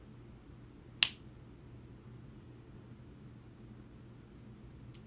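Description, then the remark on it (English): A single sharp finger snap cracks out early, then a much fainter snap near the end, both over a steady low hum with no one speaking; fingers snapped at a place of hurt or sickness during a countdown in a healing prayer. “Find a place your hurt, find a place where the sickness is, and just snap your fingers.”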